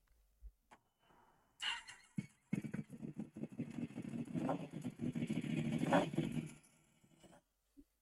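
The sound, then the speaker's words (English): A new Japanese inline-four motorcycle with an aftermarket exhaust cranks and fires up, then settles into a throaty, uneven idle with a few revs, sounding loud before cutting off near the end. “It's a new Japanese in line four.”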